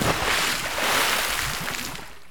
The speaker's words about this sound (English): The figure takes a step back and collapses into the pool with a loud splash.